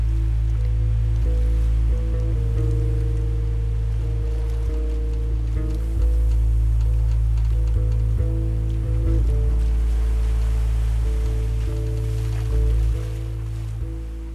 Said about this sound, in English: So up the front, you've got the waves and the chords together. It's awesome.